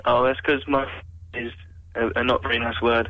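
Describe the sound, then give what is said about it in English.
A caller's voice comes through a muffled, narrow phone-in line, thin and boxy with the highs cut off, speaking in short bursts over a steady low hum. “What are you speaking on a bit of wood or something? Why? Because I can hardly hear you.”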